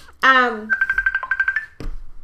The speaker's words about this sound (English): I don't even know where that's coming from. Awesome. I have all of my notifications turned off and now something's ringing.